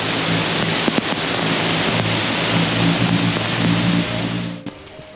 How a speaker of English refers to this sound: Torrential rains and strong winds toppled trees across the region, leaving thousands of people without power.